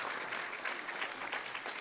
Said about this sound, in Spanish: ¿Alguien está de acuerdo conmigo en eso? Amén. Damos un aplauso.